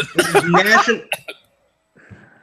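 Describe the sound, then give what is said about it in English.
A loud throaty hacking fit, rough and voiced, then two short sharp coughs, a brief silence, and faint murmuring at the end. “I hope you got something for that cough.”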